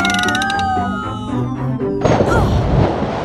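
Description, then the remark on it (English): Descending whistling tones slide downward for about two seconds, then a loud, sustained crashing splash erupts as the wow machine craft makes a water landing in the Pacific Ocean, roaring broadly until the end. “Prepare for a water landing, Guy Raz.”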